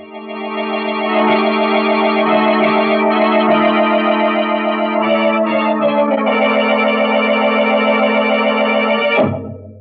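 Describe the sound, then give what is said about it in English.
A loud, harsh prison alarm siren, sounding after a prisoner has broken out, blares continuously for about nine seconds, a steady buzzing drone of layered tones that cuts off abruptly at the end. “But instead of listening to that alarm, you should have paid more attention to that wife of yours.”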